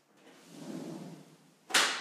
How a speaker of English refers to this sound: That's the girls busting in the door and telling us we have to go for a walk with them.